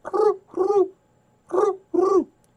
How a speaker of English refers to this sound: When you hear this, it's not just a noise. It has meaning that the bird is trying to communicate. In this case, the thrush is saying, "Hello, I'm here. I'm all right."